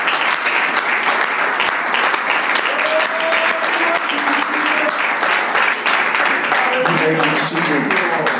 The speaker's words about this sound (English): Put your hands together. Give the Lord a hand clap of praise.